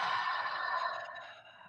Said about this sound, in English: just beginning to feel the awareness in the body as the breath comes in through the nose, feel expanding the ribs, and then exhaling, contracting, releasing, expelling completely through the nose. Full body breathing in. And breathing out.